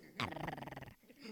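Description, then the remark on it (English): A short, rough, snarling growl like a small angry dog, fairly loud, lasting under a second before trailing off into quiet background noise. “yeah, there was like a really small, angry dog.”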